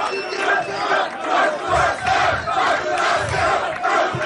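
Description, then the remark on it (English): A large crowd cheers and roars continuously, loud and dense, swelling in rhythmic surges almost like a chant, with deep thumping bursts underneath and no single voice standing out. “He's warming the crowd up.”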